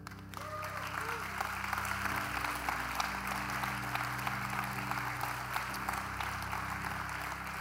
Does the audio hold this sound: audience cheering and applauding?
yes